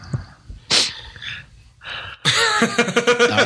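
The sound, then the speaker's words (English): Nasal sniffing into a microphone: a few short, breathy snorts spaced apart, then a longer, louder burst of rough sniffing and breath noise. “Somebody's microphone is sniffing.”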